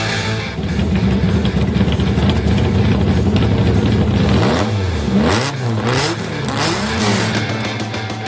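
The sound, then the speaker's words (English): A TVR Cerbera sports car engine rumbles loudly, then revs hard in a few rising and falling surges before settling back to a deep, steady growl. “another car sound from the vault. That is Artem and his TVR Cerbra”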